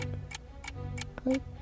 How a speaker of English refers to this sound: Is it ticking or... Or is it turkey? No. It's fucking ticking.